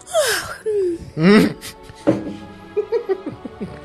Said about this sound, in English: And …'s just smiling as disarmingly and nicely as she can. And yawns.